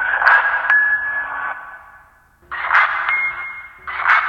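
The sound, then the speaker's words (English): Three struck, bell-like mallet tones from a sample mapped across a keyboard and played at different notes, each with a sharp attack and a sustained, slowly fading ring, the first note long, the later two at slightly different pitches. “It sort of sounds like a bell here and there. It sort of sounds like some sort of mallet as opposed to a whistle.”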